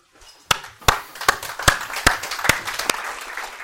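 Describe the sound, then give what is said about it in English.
Applause from a standing audience for the people who work in the NHS builds quickly, with loud, evenly spaced claps about every half second standing out above a dense, steady patter of many hands. “something which I'm going to do every time I stand up and speak, and I'm probably therefore going to do it for the rest of my days, which is to ask everybody in the room to stand and applaud the million people that work in the NHS day in, day out.”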